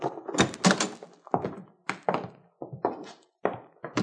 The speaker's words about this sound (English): I'll open the door.